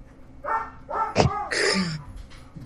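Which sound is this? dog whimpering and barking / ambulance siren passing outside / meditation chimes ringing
dog whimpering and barking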